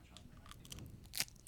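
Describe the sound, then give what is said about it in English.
Biting and crunching of crisp, spicy hot potato chips, a series of sharp brittle cracks with one loud crunch near the end, with no talking. “Let's get the crunch on the mic.”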